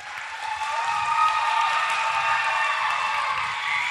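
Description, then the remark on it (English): An audience claps steadily, a dense, even patter of many hands filling the whole stretch at a fairly loud level, with no voices on top. “So I'm going to read off each thing, and if I read a certain thing and you think it's awesome, I want you to clap for it, all right?”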